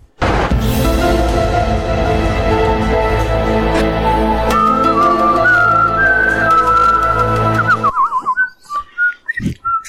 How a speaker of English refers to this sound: I noticed extra whistles there. Can't help myself.